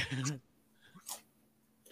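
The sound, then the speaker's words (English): Someone crunches leftover tortilla chips, with two or three short, crisp bites spaced apart and fairly quiet. A brief murmur of voice comes at the start. “I had some leftover tortilla chips from Condado. I didn't think you were going to hear me.”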